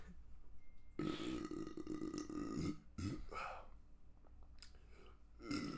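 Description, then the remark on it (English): A loud, drawn-out burp rumbles for nearly two seconds, followed by a shorter second burp and a brief third one trailing off at the end. “Beer makes me burp for some reason.”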